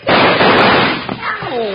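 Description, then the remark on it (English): A single loud gunshot, fired near a man's feet and just missing his big toe, bursts out and rings briefly before a man's voice cuts in right after. “Hey, cut that out. You just missed my big toe.”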